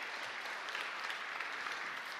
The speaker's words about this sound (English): Let's give them a round of applause and let's stand as we do that as well.